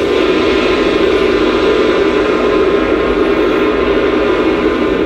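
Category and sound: sound effect, ocean waves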